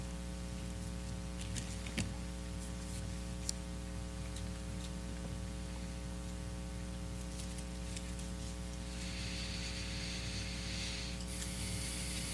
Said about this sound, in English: Love to hear them pages turning. Yeah, I like that. James chapter 1.